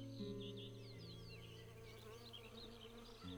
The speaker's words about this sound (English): He kneeled to listen to a bee buzz into one of the frilly orange heads in the carpet of flowers around him.